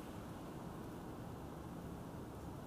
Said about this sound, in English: Right now, y'all probably hear the wind blowing. It's rainy, it's windy, it's cold.